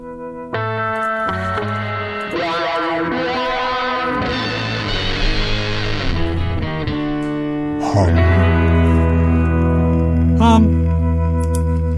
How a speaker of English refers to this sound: We are live. Here is the intro music.